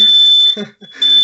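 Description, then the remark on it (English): A loud, shrill smoke alarm in a kitchen beeps in two long piercing bursts with a short gap between them, while a man's voice talks faintly underneath. “Yeah, and my fire alarm just went off out in the kitchen.”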